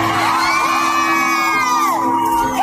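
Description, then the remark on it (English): A crowd at a live music show whoops and shouts in a loud, sustained burst, high voices rising and sliding in pitch over a dense wash of cheering with no break. “And the crowd reacts because, you know what?”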